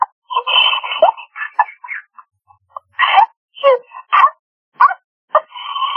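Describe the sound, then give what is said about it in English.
A woman imitates a dog, letting out a string of short, sharp barks and a few drawn-out yelps in an uneven rhythm, loud. “So she's just out here barking. Like, just, hey, let's bark.”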